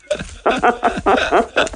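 A blind dog lets out a quick series of short, high yelping barks mixed with whimpers, about six bursts in under two seconds, fairly loud and with no one talking.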